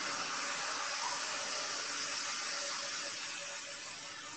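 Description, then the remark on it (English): A steady, broad roar of an airplane flying overhead near an airport, a hissing jet rush with a faint hum beneath it, holding even for several seconds and easing slightly at the end. No one speaks. “I live near the airport, so if you heard that airplane, that's what that was.”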